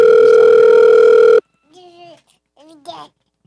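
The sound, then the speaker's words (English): A loud, steady telephone dial tone hums for over a second while a call is being dialed, then cuts off abruptly, followed by a child's brief babbling voice. “Let's open up the line and see. Are you dialing already?”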